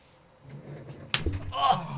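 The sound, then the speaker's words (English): A single sharp slap cracks out partway through, followed by a brief burst of voices reacting, with low murmuring talk beforehand. “Oh, do it again, I was going to make a slap noise.”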